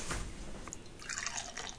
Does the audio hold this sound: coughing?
no